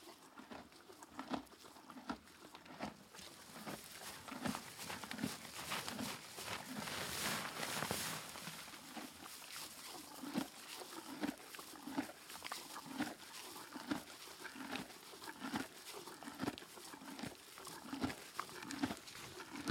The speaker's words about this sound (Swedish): Vi lyssnar lite på hur det låter i stallet på morgonfoder. Aston Millie och käkar hö. Hon äter fortfarande faktiskt i sin höpåse för att hon ska få gå ut och käka det utomhus alldeles strax.